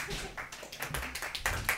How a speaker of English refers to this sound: y'all deserve a round of applause, really.